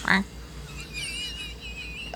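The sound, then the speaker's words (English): A person imitates a goose or duck, and it comes out more like a duck's quack: a short, nasal, honking burst at the start, then a low hum of background noise and another brief vocal blip at the very end. “I think that was more of a quack.”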